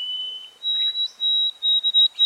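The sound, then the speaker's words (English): A white-throated sparrow sings the simpler, shorter modern version of its song, recorded about 60 years after an early-1950s recording: a clear, pure whistled note steps up to a higher one, then breaks into a few quick repeated notes with an abbreviated ending. “This bird sings a simpler, shorter song with an abbreviated ending.”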